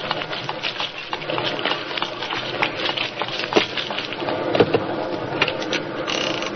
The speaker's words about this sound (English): Good Lord, it's pelting with rain.